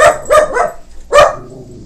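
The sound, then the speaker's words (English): A dog barks in a quick burst of three or four sharp, loud barks, a short pause, then one more strong bark trailing off. “Oops, there's the dog.”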